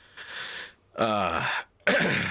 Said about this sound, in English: sorry, listeners, I'm clearing my throat and everything.